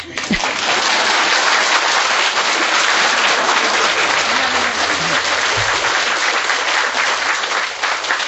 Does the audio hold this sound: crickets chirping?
no